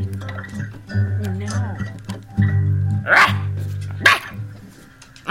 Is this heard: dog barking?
yes